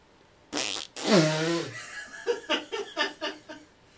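fart

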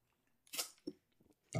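drinking water

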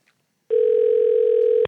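telephone call ringing

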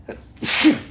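sneeze

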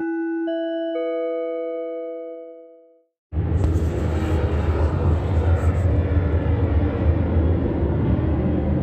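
airplane flying overhead

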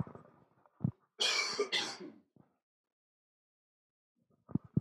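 cough

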